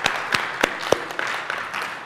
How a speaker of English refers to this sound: First of all, I'd like to give a round of applause to the band up here. This was really, really, really, really good.